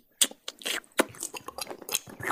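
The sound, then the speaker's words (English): Wet, squelching creature noises made with the mouth for a creature named Casper as it squelches back through a door and hops onto someone's shoulder: a quick run of irregular slimy, crackly bursts with squishy, gurgling texture, fairly loud and without any talk. “And then you see Casper sort of squelch back through the door and squelch back over to you and hops onto your shoulder.”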